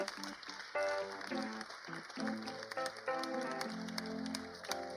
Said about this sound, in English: Stand up on your feet. Yeah, I'll stand for that. Yay, come on, guys, say done. Quick clapping. Come on, keep clapping for God.